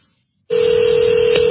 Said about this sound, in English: Oh, hold on. I've got a call from another one of your people. Uh-oh. All these phone calls.